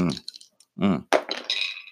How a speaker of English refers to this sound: There's lots of like nice rolling tables in the back. So you'll probably hear like some dice rolling. Hopefully that's some nice sick ASMR.